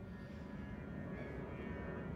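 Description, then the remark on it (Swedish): An airplane in the air traffic at Bromma flies overhead, its steady, loud engine rumble filling the whole stretch with a low roar and a faint high whine on top, no voices heard. “Nej, nu kommer ett flygplan.”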